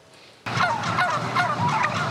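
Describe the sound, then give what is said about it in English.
A flock of all-natural turkeys gobbling together in the morning on a farm in Maryland, their overlapping, warbling calls starting abruptly and filling the air loudly and continuously, with no one speaking. “raising a flock of all-natural turkeys”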